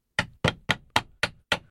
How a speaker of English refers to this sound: Sounded like a hammer pounding nails.